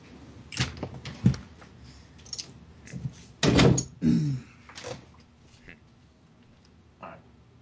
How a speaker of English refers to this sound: Let me shut my door real quick.